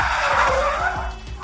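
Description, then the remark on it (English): A loud, sustained tire skid screeches for over a second, its high squeal wavering and sliding in pitch above a low engine rumble as a van swerves, driven by Tiger towards the docks. “Tiger is commandeering the van towards docks, the same dock that helped us in the past.”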